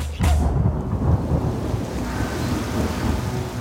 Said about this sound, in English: The clouds opened up overhead, bringing sheets of water down onto the streets, a gift from Tlaloc, the rain god.